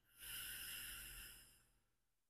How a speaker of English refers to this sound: How about we just take a deep breath? 'Cause I don't know if I just did that whole 2 minutes. So in through your nose for like a count of four. Hold one, two, three, and release for a count of six out your mouth.